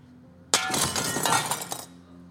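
Glass shatters with a sudden loud crash, then shards keep tinkling and clattering for over a second before fading into a low background hum.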